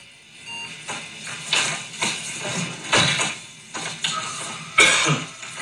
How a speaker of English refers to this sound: Here's a scene from Severance. Guy sniffles.